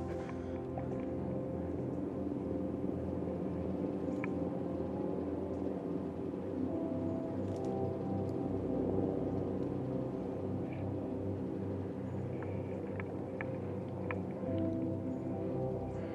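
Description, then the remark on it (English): A helicopter drones overhead during a hike near a mountain top in Los Angeles around sunset, with a steady, throbbing low rumble that holds constant for the whole stretch, fairly loud and unbroken, with no voices over it. “Oh, listen to that chopper.”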